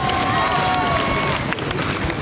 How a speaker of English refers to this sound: The crowds are so loud, I'm struggling to hear what you're saying. Yeah, it's quite deafening here with everyone banging on the barriers.